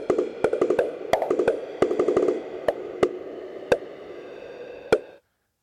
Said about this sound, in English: So that would be my choice, and I didn't play our drip roll. I'm going to do that now, and then you can talk about why I made the wrong choice.